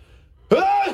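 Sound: imitated sneeze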